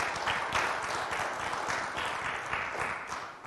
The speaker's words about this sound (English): Please applaud, yes.